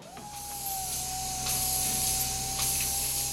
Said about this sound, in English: With pistons pumping and the engine of his motor chair lightly thrumming, Arthur turned his seat away from the decorated, honored captain and moved closer to the window.